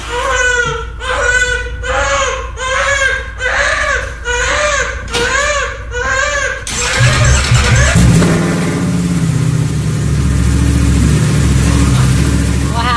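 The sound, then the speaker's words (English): A baby wails in rhythmic, repeated cries, then a father turns on his motorcycle to stop the crying; the engine starts up and revs loudly, its steady rumble taking over while the crying fades beneath it. “His baby was crying, didn't know what to do, tried everything, then turned on his motorcycle to stop the crying and put the baby to sleep.”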